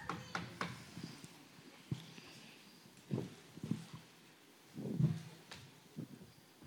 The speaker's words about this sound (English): But then there was another knock at the door.